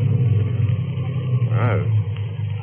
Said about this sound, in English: So I choked the car.